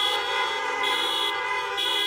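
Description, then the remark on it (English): Car horns blare together in a steady, overlapping chorus in a church parking lot, several horns honking at once as praise for the worship team, with brief shifts in the mix, loud and sustained across the whole moment. “So give Abby and the worship team a honk praise today.”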